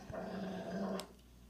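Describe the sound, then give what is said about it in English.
A strange dog lying next to a child growls in a low, steady rumble for about a second, fairly loud, ending in a short sharp burst before going quiet. No one speaks. “Yeah, just let a strange dog that's growling at you lay next to your fucking kid.”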